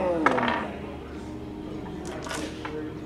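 A faint crystal glass clink rings out briefly with a short, bright tone, followed a couple of seconds later by a few soft clattering taps over a low, steady background.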